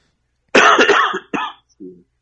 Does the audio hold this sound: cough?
yes